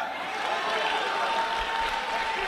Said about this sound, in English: But clap your hands and praise him, because when we were yet sinners, he died.